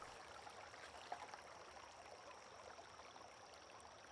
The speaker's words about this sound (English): Embraced by the mysteries of nature, you surrender to the sound of the river's soft lapping.